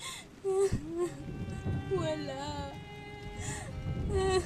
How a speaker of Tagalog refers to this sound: Oh, bakit ka umiiyak? Ano nangyari?